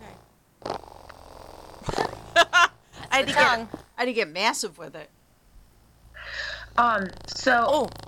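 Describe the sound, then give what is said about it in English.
A faint, steady low-pitched vibrating hum from a toy's purring motor runs continuously beneath people talking, never rising above their voices. “There it is. That's a lovely purr.”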